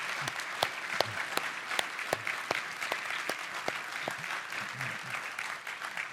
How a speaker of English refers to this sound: And so could we just all, as an just an expression of our thankfulness to these people, our thankfulness to God, can we just honor them by our applause here for a minute? Thank you.